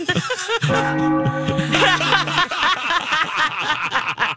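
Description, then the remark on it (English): A sustained, ringing bell tone sounds once for about two seconds, followed by people laughing and chuckling. “When they're dong, we'll hear a bell, right?”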